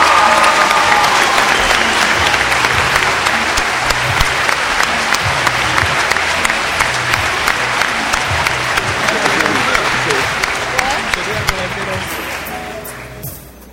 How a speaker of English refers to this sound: Please give a round of applause to Princeton's own Dr. Cornel West.